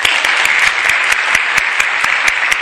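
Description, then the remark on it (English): A large church audience at Blessed John XXIII Parish applauds the RCIA candidates at Mass on Good Shepherd Sunday, dense overlapping claps filling the space with a sustained, loud wash of clapping that holds evenly throughout. “You can applaud for them.”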